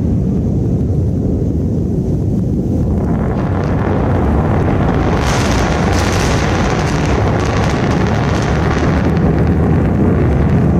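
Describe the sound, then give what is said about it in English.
Deep double sonic booms from two descending rocket boosters landing on the Florida coast roll through a loud, sustained rumble, with heavy wind buffeting the microphone throughout and no voices. “That's the double sonic booms.”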